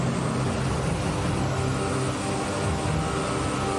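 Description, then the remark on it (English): A tank rumbles steadily as it drives over a car, a dense, continuous low engine roar with grinding noise that holds at an even, fairly loud level throughout, with no voices. “Kind of messed up to make me drive over the car I drove here.”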